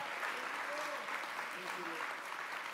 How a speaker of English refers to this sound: Stand on your feet, everybody. Give the Lord another great big hand clap on this awesome Tuesday morning service.